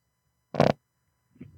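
A single short, loud fart: a quarter-second buzzy, raspy burst, followed by a faint low murmur after a brief silence.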